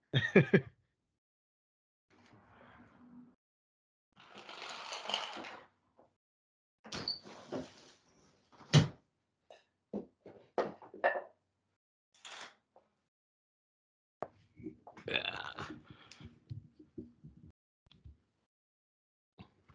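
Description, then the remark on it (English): A window is wrestled shut with a series of knocks, scrapes and sharp thuds, irregular bursts of rattling and sliding with short silences between them. “By the way, whoever hears all that knocking noise, I'm sorry, I was closing my window.”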